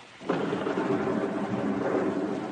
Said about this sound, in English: I don't like the thunder.